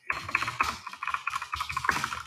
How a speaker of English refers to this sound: Damn, that's a loud keyboard there, partner.